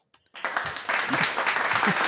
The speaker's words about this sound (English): So where's the clapping? Where's the clapping? Oh my goodness! Yeah. Get the soundboard going.